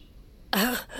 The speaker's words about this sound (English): Wolf of heaven, coughing blood into my hand like a wounded pup.